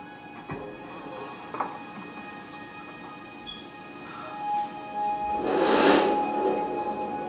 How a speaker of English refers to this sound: Whoever's out there revving their engine like that must just be trying to impress some chicks walking by or something.